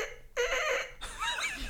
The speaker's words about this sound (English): I would say, did you make a duck noise? I don't know how that happened.